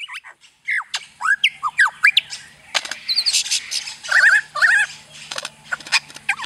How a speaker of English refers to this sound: And so sounds like the lyrebird, they just resonate. I think we actually have some recordings of the lyrebird we can play here. Let's have a listen.